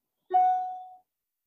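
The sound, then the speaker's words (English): A single email notification chime rings out alone, a bright mid-pitched ding that starts sharply and fades smoothly over about half a second, with no talking. “It was just as an email came through.”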